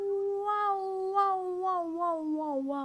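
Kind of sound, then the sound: vocal imitation, person imitating cat meowing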